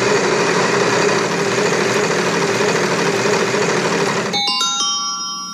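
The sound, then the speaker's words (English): A prize wheel spins with a dense, steady whirring rattle for about four seconds, then stops on a bright ringing chime that fades out. No one speaks. “Wheel of Topics, let's give it a spin.”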